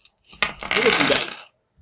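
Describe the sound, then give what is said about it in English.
Several dice clatter onto a hard tabletop, a close, bright burst of rattling clicks and bounces that tumbles for about a second before settling into silence. “I got my dices.”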